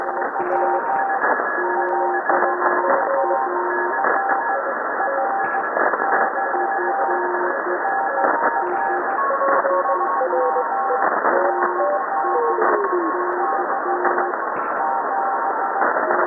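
Many Morse code tones beep at once over a steady band of radio static, each at its own pitch and speed, some strong and some faint, overlapping continuously without any voices.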